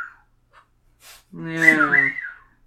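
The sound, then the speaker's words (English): A person vocally imitates an astromech droid's bleep of triumph, a bright warbling whistle-like tone that rises and wavers for about a second over a buzzing hum, preceded by a couple of faint breathy sounds. “It's a bleep, not a whistle. Oh, it's a bleep? Yeah, it's a bleep of triumph.”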